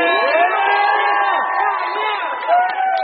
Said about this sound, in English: Can I just give one more round of applause for 1,600 miles of bike path?